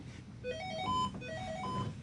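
A telephone rings with a melodic electronic ringtone, a short rising sequence of bright tones played twice in quick succession over a low background hum.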